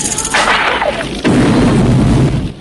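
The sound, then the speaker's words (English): An explosive arrow fired by Rambo makes a hissing, whooshing rush with brief whistling tones that builds, then straw shacks on the outskirts of a village explode in a loud, deep blast that rolls on as a sustained, crackling rumble before easing off. “As straw shacks on the outskirts of the village explode, the Russian and Vietnamese soldiers make a run for it.”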